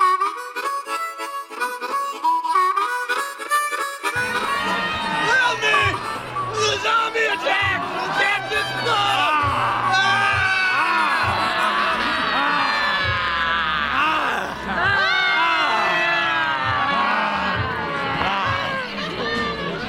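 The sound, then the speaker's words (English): A loud, chaotic crowd yelling and screaming as people come out of a door in Wyandotte, many voices overlapping in frantic shouts and whoops, with a low rumble entering after a few seconds and the commotion staying intense throughout. “Well, we already started with some kind of yelling and screaming and people coming out of the door.”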